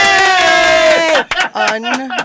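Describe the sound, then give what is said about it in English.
A loud, drawn-out cheer of several voices, one long sustained whoop for about a second, then a few shorter excited shouts. No clapping stands out. “To a big round of applause, we can now add unbinium to our fantasy.”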